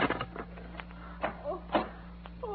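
Metallic clicks and rattles of a key unlocking a door, a few irregular mechanical clacks spread over a couple of seconds, with no one speaking.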